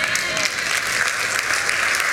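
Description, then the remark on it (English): An audience claps steadily, a dense wash of many hands with no clear beat, loud and sustained throughout, with faint voices mixed in. “I see those of you who aren't clapping.”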